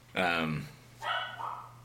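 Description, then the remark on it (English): A pet dog named Stella, inside a house, gives two drawn-out barks about a second apart, the first louder and more tonal, the second shorter and muffled, over a low steady hum. “Stella's at it. Can you hear Stella?”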